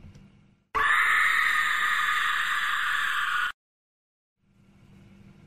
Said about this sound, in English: I used to have that just on a screen. Now it's just the pork scream. Now the pork scream just happens and then I go back.